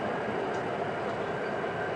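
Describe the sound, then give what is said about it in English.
A subway train runs steadily, a dense, continuous rumble and hiss that stays loud and even throughout, with faint rattling in the carriage and no voices. “And Tom wanted to go out to dinner at this restaurant, so I hop on the subway, and I get to the restaurant.”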